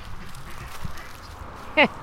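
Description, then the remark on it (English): Quiet outdoor ambience with a low rumble beside a big pond crowded with ducks, then a single loud duck quack near the end, brief and nasal. “Have you ever seen so many ducks in your life?”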